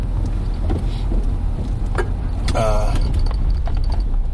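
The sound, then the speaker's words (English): A parkade garage door rolls upward as a car drives out, with a steady low mechanical rumble, scattered clanks and rattles, and a brief whining hum partway through. “One of the things that happened is the door going up so I can get out here.”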